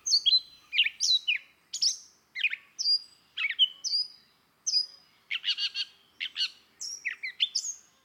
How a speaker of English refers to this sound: I hardly know whether I'm more pleased or annoyed with the catbird. Perhaps she's a little too common, and her part in the general chorus a little too conspicuous.